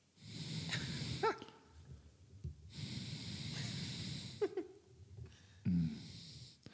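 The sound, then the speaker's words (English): A voice imitates heavy, laboured breathing: long rasping exhales in slow repeated waves, punctuated by short snorting, strained grunts between breaths. It imitates a woman masseuse pressing on someone's upper back during a massage. “Very hard breathing.”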